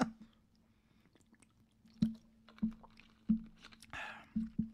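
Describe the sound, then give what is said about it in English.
Wet mouth sounds of someone sipping and swallowing water, a handful of soft gulps and clicks spaced irregularly over a low steady hum, with no talking. “Excuse me, I'm taking a sip of water.”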